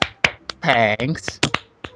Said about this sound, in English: Thanks, my wonderful co-host giving me claps.